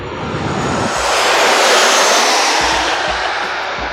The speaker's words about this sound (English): Out in Little Italy, there's gonna be a plane passing by.